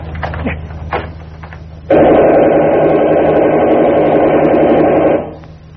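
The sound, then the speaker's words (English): An armored car's engine suddenly roars to life after some scattered clattering, holding a loud, steady, throaty drone for about three seconds before dropping off. “This armored car alters our whole plan.”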